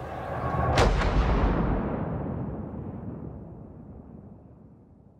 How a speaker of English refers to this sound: At the signal from the constable of the tower, the cannon mounted on the walls fire, signaling to the people of the city that the Queen is dead.